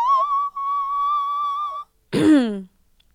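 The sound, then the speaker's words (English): A singer's thin, piercing whistle-register tone held steady for nearly two seconds, followed after a short pause by a quick voiced swoop sliding from high down to low, fairly loud. “That is not that is literally whistle tone.”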